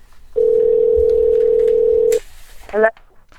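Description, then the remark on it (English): A steady, loud telephone ringing tone holds for about two seconds as a phone call is placed to special guest Dee Wallace, then cuts off with a click, followed by a brief voice as the call connects. “Let's try and see if we can get her on the phone.”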